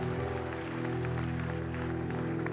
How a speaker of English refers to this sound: I think we all need to clap. I think we all need to clap. You're not clapping for me.